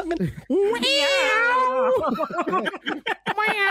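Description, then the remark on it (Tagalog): A person imitates the howling cat from the intro of the original early-1990s Gabi ng Lagim, a long, wavering, high-pitched yowl that rises and bends for about a second and a half, followed by quick voiced chatter. “Umaalulong pusa.”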